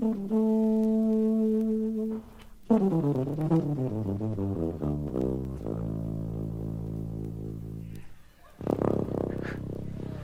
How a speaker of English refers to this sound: Oh, sorry. Solo. Tuba solo. Yeah. Here we go again. Sound like claps, too. Oh, tuba solo.